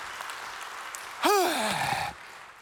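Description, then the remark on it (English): Audience applause, a steady wash of clapping throughout, with a single voice letting out a rising then falling whoop over it midway. “Y'all give them a hand, okay?”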